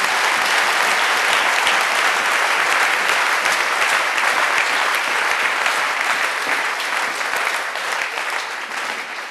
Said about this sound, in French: Applaudissez pour Salomon. Salomon.